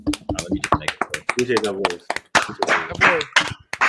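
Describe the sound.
Several people clap in quick, uneven bursts of sharp, loud smacks lasting the whole stretch, while voices talk over the applause.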